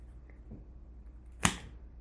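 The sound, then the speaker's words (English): One sharp, crisp slap of palms meeting in a dap handshake, a loud single smack that stands out against a quiet, low background hum, with no talking. “You can hear the satisfying dap up.”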